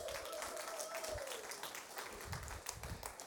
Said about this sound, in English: Can we give your campus pastors a round of applause?